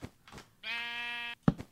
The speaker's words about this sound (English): Oh, no, sheep. No, this is my hidey hole. Get out of here, you screw.